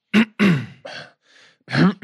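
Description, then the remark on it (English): A person imitates a string of coughs and throat clearing: four short, rough bursts, the third one softer, with brief pauses between them and no talking. “They have a tickly throat. And they're like, please, someone just cough.”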